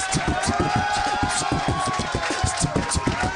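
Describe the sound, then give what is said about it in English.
Steady, dense applause from an audience at the end of a show fills the whole stretch, a continuous wash of many hands clapping at once, loud, with a faint murmur of crowd voices mixed in. “Then they applauded.”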